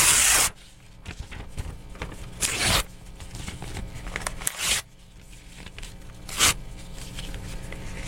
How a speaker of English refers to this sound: I'm in good tearing shape. I've torn it many times. This is now a pile of paper that is about 2 inches by 2 inches.